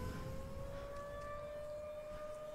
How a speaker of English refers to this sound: I hate these sirens. They're really freaking me out.